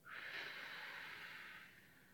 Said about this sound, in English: Like you're blowing out the candle. Let's try that again. In through your nose. Out your mouth. In through your nose. Out your mouth.